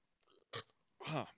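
A loud beer belch: a couple of short guttural bursts lead into a longer, croaking burp with a rough, pig-like grunt quality, heard alone without any talking.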